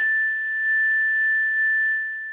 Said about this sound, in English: I have my own chime, Maria, so let me play it for you. I think it's such a beautiful sound.